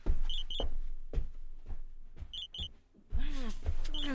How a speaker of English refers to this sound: Why can I still hear the alarm?